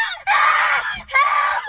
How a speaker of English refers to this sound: What do we do? Just scream.